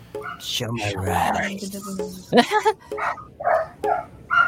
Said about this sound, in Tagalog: Yung aso